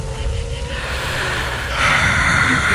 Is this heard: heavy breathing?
yes